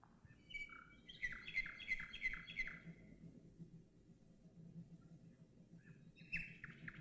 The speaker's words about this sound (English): And because this was the beginning, well into the World War II, this turned out to be an extraordinary recording. And I'd just like you to listen to this for a few minutes. There's nightingale going.